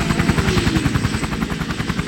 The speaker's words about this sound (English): And then once we got the survivor all packaged up and ready to go back in the helo, we get hoisted back into the helicopter. Usually they come into a 60-foot hover, so it's a little bit of a ride up, but I enjoy it.